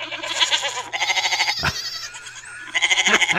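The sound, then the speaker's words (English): Loud goat bleats ring out in a few quavering bursts, bright and nasal, with a brief thump in the middle and no talking over them; goat bleats played as a car horn sound. “I want goat honks on Teslas.”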